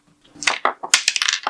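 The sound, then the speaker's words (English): A quick burst of hard little clicks and clatters as dice are rolled across a tabletop during a game, rattling several times in a row before settling. Fairly loud, with no talking. “Roll one more dice for me.”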